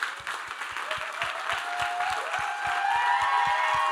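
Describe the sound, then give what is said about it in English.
An audience applauds in honor of their pastors in a dense, continuous wash of clapping that holds steady and slightly swells toward the end, with a faint regular low thump and sustained tones underneath. “And so real quick, I couldn't move on into the message, but can we just also give another hand of applause in honor for your pastors this morning?”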